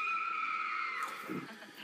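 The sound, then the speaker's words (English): A single piercing, high-pitched shriek, Elvira's trademark shriek on her movie-hosting show, holds steady for about a second, then breaks off into a short burst of rough, noisy rumble. “There it is, the shriek.”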